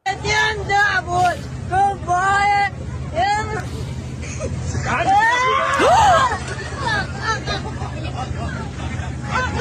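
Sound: terrified scream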